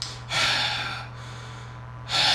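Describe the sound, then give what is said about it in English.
Heavy, close-up breathing rushes into the microphone in loud, noisy breaths — an inhale, a long exhale, then another sharp intake, with a low steady hum underneath and no talking. “Just breathing way too hard.”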